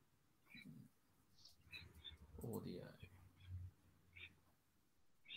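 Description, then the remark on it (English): A budgie chirps in short, high, scattered bursts, several spaced across a few seconds, with a muffled voice murmuring underneath at times. “I can hear some like chirping or something. Sounds like a budgie or something.”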